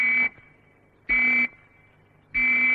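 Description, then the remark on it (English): Three short fallout warning whistle blasts, each a loud, steady, harsh tone lasting under half a second, evenly spaced about a second apart with quiet between them and no voices. “Or you may hear three whistles, like this.”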